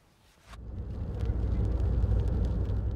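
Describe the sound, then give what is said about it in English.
After a brief hush, the deep low rumble of idling truck engines swells in and holds steady, loud, with no one speaking; hundreds of trucks stand stalled in a queue on the road toward Poland's eastern border with Ukraine. “Stranded on the road home to Ukraine, there are now hundreds of trucks in this queue, not even crawling towards Poland's eastern border.”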